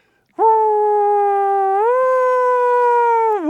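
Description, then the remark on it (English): A person's voice imitates an American police car siren as heard in New Jersey and New York: one loud, sustained wail lasting about three seconds, stepping slightly higher midway and dipping at the end, with no other talking. “I grew up in New Jersey and in New York, where police cars sound like this.”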